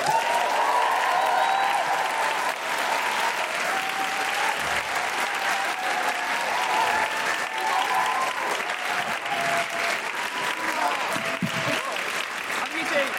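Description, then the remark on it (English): An audience claps loudly and steadily for about thirteen seconds to welcome author and presenter Dawn O'Porter, whose new book The Cows is out that day, a dense, unbroken wash of applause with scattered voices and whoops rising through it. “Please put your hands together and make general mooing noises for Dawn O'Porter.”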